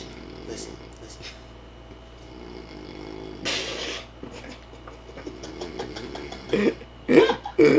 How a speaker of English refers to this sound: that motherfucker snoring. Listen to him.